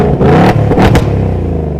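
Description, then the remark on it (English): A Ford Mustang EcoBoost engine, revved remotely with the key fob, revs up sharply a couple of times, loud, with a throaty roar and brief mechanical clatter between the blips, no voices present. “And I think that shows in new tech like the Fox body gauges, but other things too, like remote rev, which allows you to start and rev the engine with the key fob.”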